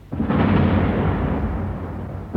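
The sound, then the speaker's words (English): A deep, heavy roar of explosions and artillery fire rumbles continuously over the city of Berlin on April 26, 1945, loud and booming, with a fresh blast flaring up at the very end. No voices are present. “The city was trembling under endless explosions that gutted it and killed thousands of those who sought sanctuary in its underground.”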